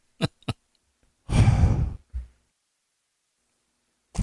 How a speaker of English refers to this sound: Oh my gosh. Sniffling like crazy.